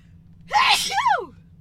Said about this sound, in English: I'm going to sneeze right now.